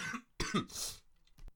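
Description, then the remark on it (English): A short, harsh cough burst, followed by a breathy throat-clearing rasp and a brief click, with no talking. “Compose myself, coughing's done.”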